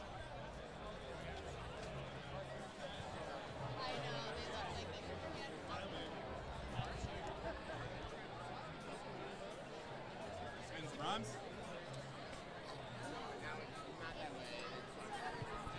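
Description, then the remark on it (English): Dense crowd chatter from many overlapping voices forms a steady, loud hubbub at a band concert at Red Rocks in 2021, heard while walking through the crowd, with occasional footsteps and brief louder exclamations rising out of the babble. “All right, we're walking through the crowd right now.”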